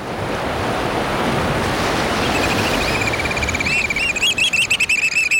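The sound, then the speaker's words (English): Ocean waves wash steadily against a rocky shoreline on the Pacific coast in a loud, continuous roar, and high, piping calls of a black oystercatcher ring out over the surf in the final seconds. “Crouching on a rocky shoreline on the Pacific coast, hearing the piping call of the black oystercatcher, a stocky black bird with bright red eyes and a stout orange-red bill, perfectly suited for jabbing limpets and mussels.”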